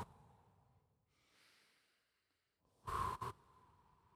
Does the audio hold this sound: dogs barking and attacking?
no